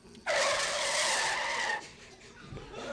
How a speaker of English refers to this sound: Like a hot branding iron on bluebonnet margarine, … voice cuts through the dust and noise, stopping 1,000 thundering cattle dead in their tracks.